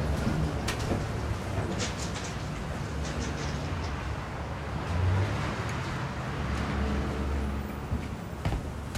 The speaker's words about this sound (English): Got tanker trucks and El Camino's coming by, so I'm hyping up this recorder.